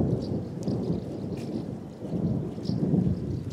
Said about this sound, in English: As you can hear, thunder rumbles overhead.